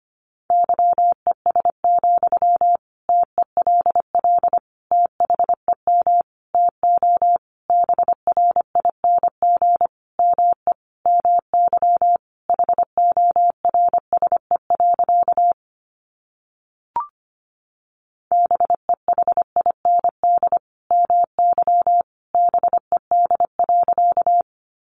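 Morse code at 25 words per minute: a single steady mid-pitched tone keyed in rapid runs of short and long beeps, broken once by a brief pause and a soft click.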